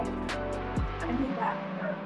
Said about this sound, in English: Sorry, my dog was getting into something.